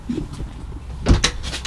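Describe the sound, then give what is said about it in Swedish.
A door at an entrance is pushed open and shuts with a low thump and a short rattle, followed by a brief scraping sound, with faint background noise before it. “Två dörrar. En grov entré. En fin. Ta den här.”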